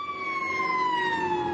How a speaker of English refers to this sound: Fire trucks moving through, obviously trying to get to areas. There goes a tanker, a water tanker truck, but a lot going on in this area.